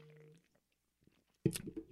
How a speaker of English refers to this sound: Take another sip.